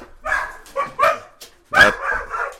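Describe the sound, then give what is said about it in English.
Dogs bark in a rapid string of loud yips and woofs, several bursts tumbling over each other as they race past the speaker in a garage. “As my dogs come racing by me.”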